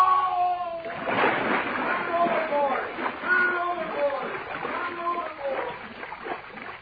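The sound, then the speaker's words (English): A man falls overboard with a heavy splash into water, followed by continuous churning and sloshing as he thrashes about, with strained voices crying out for help over the commotion. “Help! I fell in! Help me!”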